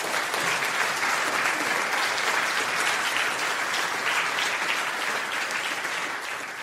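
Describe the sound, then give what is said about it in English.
An audience gives Dr. Boot a final round of applause at the end of an Ezra Institute for Contemporary Christianity evening talk: a dense wash of clapping that holds steady for several seconds and tapers slightly at the end, with no voices over it. “So why don't we just give Dr. Boot one final round of applause.”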